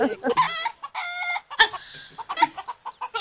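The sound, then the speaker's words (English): A chicken clucks and squawks in a quick, irregular series of bright, nasal calls, some drawn out, with one sharp louder squawk midway, and no talking over it. “And a chicken.”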